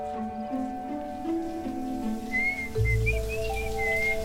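Someone whistles a short melodic tune, the clear high notes rising and dipping, over a steady background of sustained tones, with a louder low rumble joining partway through.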